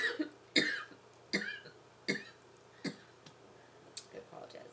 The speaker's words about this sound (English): It's okay. That's why I'm not talking, because I'm just going to edit this out. I just have my own coughing fit. That's why I was just, like, waving my arm frantically. Like, I need to cough and you're reading something important.